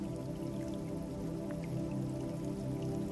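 Soft, steady rain falls continuously with scattered drips and patters, a gentle, even wash of water sound with no voices present.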